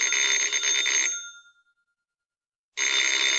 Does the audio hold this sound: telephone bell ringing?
yes